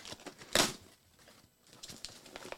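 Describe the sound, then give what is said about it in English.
A taped cardboard box being opened: one sharp ripping tear of packing tape, followed by scattered crinkly rustles and light scrapes of cardboard, fairly quiet, with no one talking. “I can tell you that Phil lacks the capacity to open a box. Open tape, apparently.”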